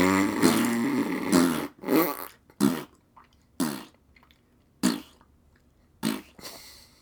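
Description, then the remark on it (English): A voice blows a long raspberry, then a string of short, sputtering fart-like bursts with pauses between them, imitating flatulence, fairly loud. “Raspberries. Yeah, fart noises for that's all.”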